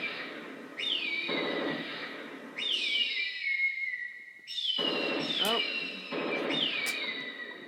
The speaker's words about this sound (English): The little noise that makes when the birds get hit.